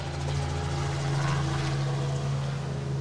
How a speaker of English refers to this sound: Ridiculous. It's another freaking plane.